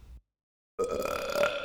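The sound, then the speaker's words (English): A single loud, drawn-out belch erupts after a brief silence, a gravelly, rumbling burp lasting about a second, prominent with no talking; a realistic sound effect in a Purcell piece warning that overindulgence at the dinner table results in excessive belching and farting. “And here Purcell warns the listener that overindulgence at the dinner table results in excessive belching and farting.”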